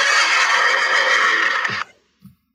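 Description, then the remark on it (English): A loud horse whinny holds steady and harsh for nearly two seconds, then cuts off, followed by a brief, soft low snort or thump. No one speaks. “I don't know how many of those horse whinnies came through, but I looked up and I was muted.”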